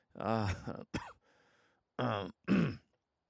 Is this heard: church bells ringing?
no